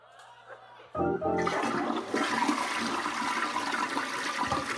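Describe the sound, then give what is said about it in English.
A toilet flushes loudly, starting with a sharp clunk of the handle followed by a sustained rushing, gurgling surge of water that continues steadily without any talking. “That's the longest flush I've ever heard in my life.”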